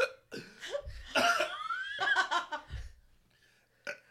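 Several sharp hiccups burst out in an irregular run, each a short voiced jolt, ending with one last isolated hiccup after a brief quiet pause.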